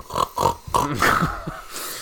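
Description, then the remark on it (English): A person imitates a pig, making a series of loud, rough nasal snorts and grunts in quick succession, with no other talking. “You need to have somehow snort the cha-ching sound, if you could do that.”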